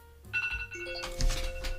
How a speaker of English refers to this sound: Uh-oh, you got all the alarms. You got alarms. Going.